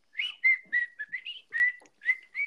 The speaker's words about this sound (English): You know, it's not even a good whistle.